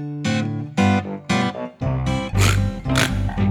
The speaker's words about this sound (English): That's a pig.